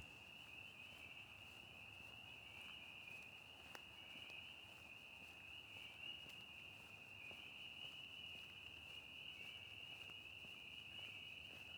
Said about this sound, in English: Sounds like sleigh bells, the spring peepers, and some toads cackling off in the distance.